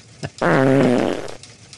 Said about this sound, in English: Yeah, because you kind of just did it to yourself, didn't you? You put yourself in the hospital over farting too much.